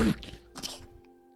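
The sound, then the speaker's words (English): A single quick sneeze: a sharp breathy burst followed by a hissing, airy release, then quiet with a faint background hum. “Bless you.”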